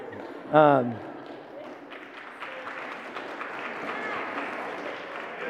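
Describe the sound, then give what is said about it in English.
A short voiced call rings out, then audience applause for a preacher during a sermon swells into a steady, dense patter of clapping that carries on at moderate loudness until the end. “I don't know what it means that that's the first time anyone's ever applauded me when I was preaching, but thank you”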